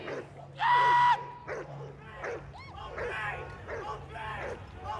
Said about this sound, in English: Suddenly, police dogs are unleashed into the sea of people.